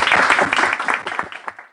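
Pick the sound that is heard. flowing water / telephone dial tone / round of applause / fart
round of applause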